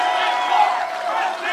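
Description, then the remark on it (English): A large rally crowd roars and cheers "run, Rand Paul, run, Rand Paul" in a continuous, dense wash of voices, loud and steady throughout with no single speaker standing out. “The crowd was cheering, run, Rand Paul, run, Rand Paul.”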